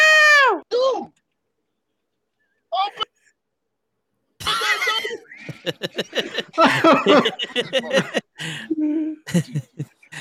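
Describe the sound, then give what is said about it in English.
A drawn-out, falling meow rings out clearly at the start, followed by a short second meow. After a pause, people talk and laugh loudly over one another. “He's talking about your cat.”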